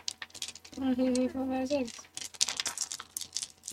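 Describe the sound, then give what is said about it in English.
Several dice, about six per player in a tabletop game, rattle and clatter in a quick, irregular burst of small clicks on a hard surface, while a voice briefly calls out over them. “Everybody just roll, like, 6 dice, and let's see how that goes.”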